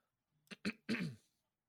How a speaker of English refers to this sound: I wanted to, sorry, I was clearing my throat. Okay. I apologize.